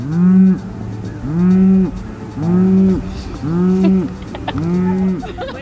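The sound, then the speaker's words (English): Cows in the small agricultural town of Cullman, Alabama moo back and forth in a steady series of five long, loud calls, each low drawn-out moo following closely on the last, with faint bird chirps in the background. “Did you provoke the cow? I didn't. They were provoking each other.”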